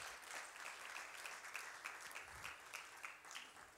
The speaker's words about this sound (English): If you receive the word, would you give God a hand clap of praise and thank him for his word?